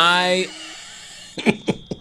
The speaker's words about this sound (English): I'm trying to sniff right now to see if I smell smoke.